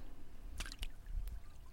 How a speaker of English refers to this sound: pull a seine net through the water to gather the gobies.